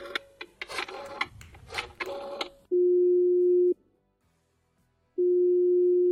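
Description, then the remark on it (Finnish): A phone number for a call to Florida is tapped out in a quick run of keypad presses, then the line rings: two steady, loud ringback tones separated by a second and a half of silence. “Me otetaan meinaan puhelimitse yhteys Floridaan. Ja itse asiassa näppäilläänpä numero tässä saman tien.”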